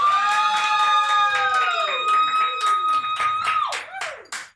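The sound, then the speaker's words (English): An audience claps steadily and loudly, voting by round of applause for Scooby-Doo, while a drawn-out whooping cheer slides down in pitch over the applause, which fades out after a few seconds. “He's not in the room, so we're gonna have to do the vote. By round of applause, Scooby-Doo.”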